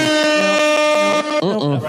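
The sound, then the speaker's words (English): Loud, blaring air horn blasts in a quick rapid-fire series, then a few wobbling, pitch-bending honks at the end. Close and harsh, with no one talking over it. “I mean, air horn kind of works.”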